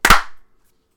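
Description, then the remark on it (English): A single loud, sharp hand clap made after a countdown of three cracks out on its own, with a bright, crisp attack and a brief ringing tail that fades within half a second, leaving silence. “All right, you want to clap?”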